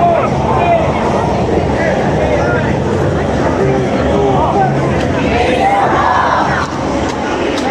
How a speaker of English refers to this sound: You hear the crowd? We support!